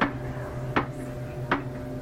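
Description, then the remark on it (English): Three sharp, evenly spaced clacks ring out about three-quarters of a second apart, each a hard wooden knock, over a low steady hum with no voices. “I was almost at the bottom when I heard the next triple clack right on time.”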